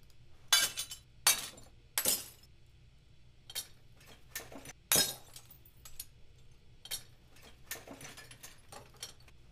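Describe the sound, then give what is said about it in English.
Glass breaking and shattering in a series of sharp, bright crashes, with several loud impacts early on followed by smaller tinkling fragments and scattered clinks, no voices present. “I don't think I have glass. I have glass breaks, but not glass clinks.”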